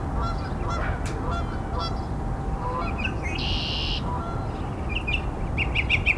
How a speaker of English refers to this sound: Probably hear Canada Goose too.